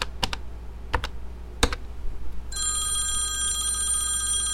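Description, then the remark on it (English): A handful of sharp button clicks as a number is dialed, then a telephone starts ringing with a steady, bright electronic tone that continues to the end, with no voices. “smiled and dialed the phone.”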